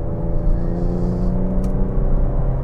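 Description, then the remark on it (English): A car engine pulls hard under acceleration while passing a dump truck, a loud, steady drone with layered harmonic hum that holds for a few seconds with no voices. “I think I'll pass the dump truck.”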